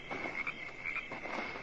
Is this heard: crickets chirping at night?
yes